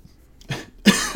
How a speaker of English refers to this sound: Sorry. Hold on. Yet again, more good radio with my coughing.